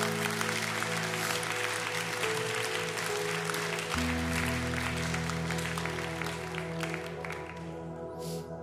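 An audience gives a hand clap of praise after a prayer, clapping steadily and warmly throughout, a dense wash of many hands over sustained keyboard chords, the applause thinning slightly toward the end.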